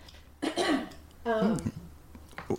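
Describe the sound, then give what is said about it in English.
A loud cough is coughed into a microphone, then after a short pause a second rougher, throaty cough with a voiced, groaning edge follows, ending with a faint breathy catch. “I just cough in the mic.”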